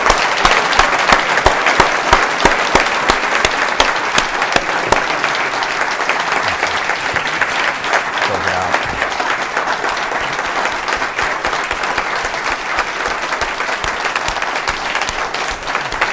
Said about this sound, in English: Sustained applause. You don't get that in the television studio. Not at all.